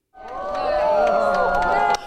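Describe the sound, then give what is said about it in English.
A large crowd of people from around the world gasps and cheers together as the Old Faithful geyser erupts in Yellowstone National Park, a dense swell of many voices rising quickly and holding loud and steady for about two seconds before cutting off. “144 years after Yellowstone National Park was established, people from around the world still gasp and cheer when Old Faithful erupts.”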